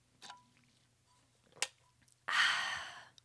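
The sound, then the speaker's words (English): Filtered water sipped from a water bottle: a soft pop and a sharp click, a short pause, then a long, breathy exhale after the sip. No talking. “I'm going to do it. You will hear my water bottle, okay?”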